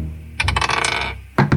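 dice being rolled

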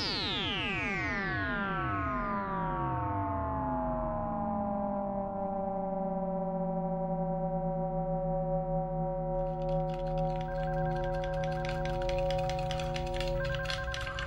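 telephone ringing

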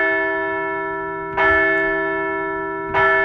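bell ringing

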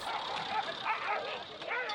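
two dogs fighting

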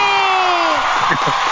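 applause and cheering

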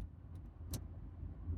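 car driving

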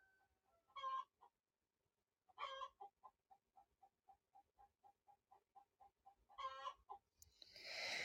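hen cackling

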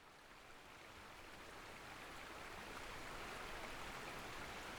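small creek flowing

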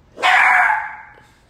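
dog barking

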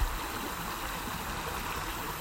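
flowing stream water

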